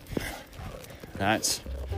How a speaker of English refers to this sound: Here he comes. There it is. So, this is what you call a hound who's excited.